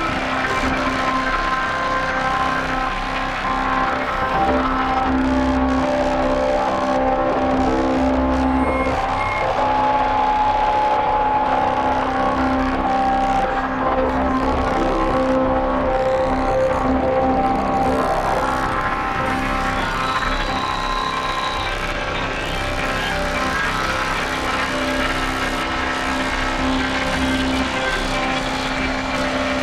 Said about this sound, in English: This is a really cool distorted drone patch. This is the kind of stuff I enjoy patching the most.